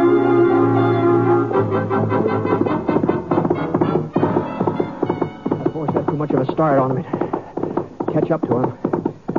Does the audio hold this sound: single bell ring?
no